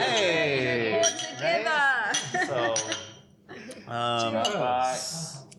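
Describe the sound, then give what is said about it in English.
Several voices chatter and laugh, then near the end glasses clink together once or twice in a toast, a bright ringing chime cutting through the talk. “Hey, cheers. Let's drink more.”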